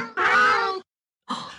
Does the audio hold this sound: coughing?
no